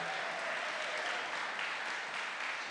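A crowd claps steadily in a dense, even wash of applause that holds at a constant level throughout, with no voices standing out.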